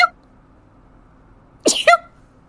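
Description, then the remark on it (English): A single sharp sneeze bursts out after a quiet stretch, fairly loud, with a short voiced tail at the end. “You were just sneezing one second and the next.”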